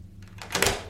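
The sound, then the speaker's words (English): A door swings shut with a solid thud and a short rattling clack of the latch as it is locked, building quickly and fading within a second. No one speaks. “Hello, you seem to have locked the door behind me.”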